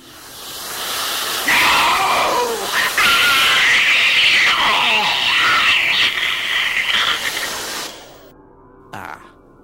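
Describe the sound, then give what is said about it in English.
A sonic hairdryer is fired as a weapon, giving a loud, sustained electronic hiss and whine that surges for about six seconds, with wavering, descending tones sweeping through it, then cuts off, followed by a brief faint click. “Well, not that I'm not pleased with your intervention, Tegan, but that sonic hairdryer.”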